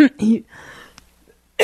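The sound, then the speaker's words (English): A person with a lingering cough coughs: a couple of harsh, throaty bursts and a raspy exhale, then a brief pause before another short cough at the end. “Sorry about the cough, everyone.”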